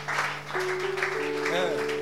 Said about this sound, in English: Oh, clap for him. He brought us.